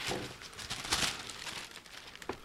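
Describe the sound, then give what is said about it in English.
A grease pencil plotting sheet from an area predictor operator's manual, used to mark where bombs hit, crinkles as it is handled: a steady crackling rustle of stiff sheet with sharper bursts partway through and again near the end. No voices. “What it is, it's a big grease pencil sheet that you would pencil in where the bomb hits.”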